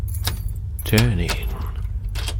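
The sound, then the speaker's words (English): Metal keys jingle in a few quick bursts of bright, clinking rattles, followed by a scrape as a key slides into a door lock, all over a steady low rumble. “A relief that soon melted upon the sound of a key being produced and entering the lock.”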